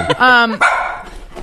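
A dog barking, loud, as a phone ringtone: a drawn-out, tonal yowl followed by one sharp bark that trails off, with no talking over it.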